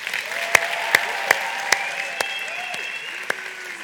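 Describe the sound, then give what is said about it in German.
An audience claps steadily for the Godi Crew, the people who organise the event, in a dense wash of applause, with a few sharper, louder claps standing out at regular intervals and faint whistles or cheers rising through it. “Und können wir bitte mal der Godi Crew einfach einen dicken Applaus geben.”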